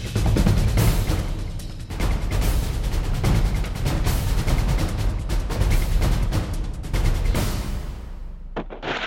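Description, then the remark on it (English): A rapid barrage of gunshots rings out over roughly nine seconds, loud and dense, the cracks overlapping with echoing booms before the volley thins out and stops near the end. “As gunshots echo across the windswept, snow-covered reaches of the wild Northwest, Quaker Puffed Wheat and Quaker Puffed Rice, the breakfast cereals shot from guns, present the Challenge of the Yukon.”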